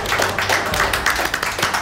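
A group of people clapping together, a steady, dense patter of applause at moderate loudness throughout, with no voices heard.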